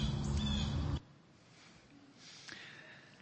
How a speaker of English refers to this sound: I don't know what kind of bird call that was calling the background, but it was right on cue. You know, just right on cue.